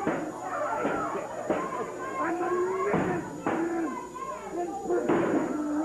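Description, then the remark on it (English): A real steel chair slams into a wrestler again and again, about five loud, sharp, clanging whacks at uneven intervals, with excited voices shouting over a steady crowd roar. “That was a real chair, too.”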